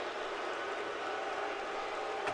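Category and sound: crowd, crowd booing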